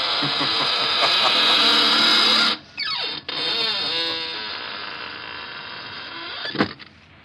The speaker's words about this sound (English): We'll be trying your creaking door again soon for some more laughs.